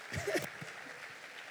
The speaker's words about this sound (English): Dale fuertes aplausos a Jesús. Go ahead, give Jesus a strong round of applause.